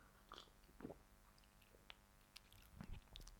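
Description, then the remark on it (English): Someone sips canned Chardonnay wine from a can, with a few soft slurps, faint swallowing and small mouth clicks in an otherwise quiet moment without talking. “Let me take a sip of this Chardonnay Cozelle.”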